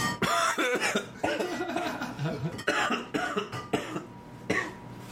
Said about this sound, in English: was trying not to cough.